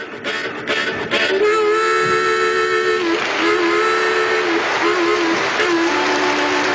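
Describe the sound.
A bluesy harmonica imitates the L&R Railroad passenger train on an early Grand Ole Opry broadcast, opening with quick chugging bursts and then sustaining loud, wailing chords like a train whistle over a noisy, hissy old recording.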